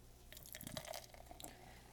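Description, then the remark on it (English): A light golden beer with lots of tiny bubbles pours into a glass in Alpine, Wyoming, with a soft, steady splashing and trickling, dotted with brief dripping and fizzing bursts, fairly quiet, with no one talking. “And the poor.”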